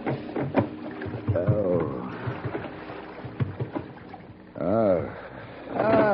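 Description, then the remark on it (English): A small rowboat moves across water, its wooden oarlocks creaking in slow, drawn-out groans between soft splashes and lapping, fairly loud. “The rocking movement of the small boat didn't help the dull, throbbing pain in my head.”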